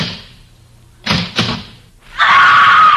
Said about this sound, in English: The beautiful stenographer in the insurance office is just coming to work. She's punching the time clock.